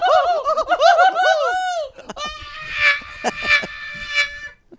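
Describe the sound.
A voice imitates Daffy Duck when he gets excited: rapid, warbling high-pitched squawks give way to a raspy, buzzing sputter broken by sharp bursts, loud and continuous for several seconds.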